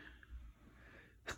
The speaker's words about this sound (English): Bless me. Had a little sneezy sneeze there.